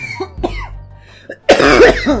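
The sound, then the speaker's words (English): A person coughs, a few short hacking coughs followed by a louder, harsher burst of coughing, with no talking. “Wish I had some Starbucks Frappuccino to get rid of this cough.”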